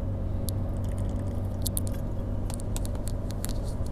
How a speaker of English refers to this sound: I had to take a little drink of water there because I'm losing my voice.